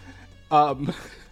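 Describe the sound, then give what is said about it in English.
A person briefly imitates a cow's moo, one short voiced call rising out of a quiet background before fading into soft murmuring. “Why was it mooing the whole time?”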